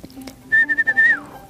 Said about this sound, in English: Anyways, here's my whistle to end this podcast for today.